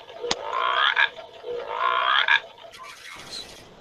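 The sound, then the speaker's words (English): A frog croaks in two long, raspy, pulsing bursts, each about a second, with a sharp click between them and faint rustling at the end; moderately loud, with no talking. “Do you hear the frog?”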